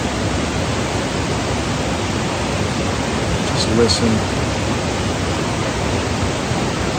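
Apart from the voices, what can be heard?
flowing river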